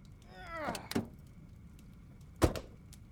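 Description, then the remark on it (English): A car door opens with a brief creak and clunk as people get out of the car, then after a short pause shuts with a solid thud. No voices are heard. “Okay, getting out of the car!”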